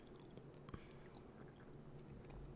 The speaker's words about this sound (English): So if you're drinking whiskey with me, raise your glass up. This is time to drink. So, Shlante. Mm. It's... first sip of whiskey. It's always good.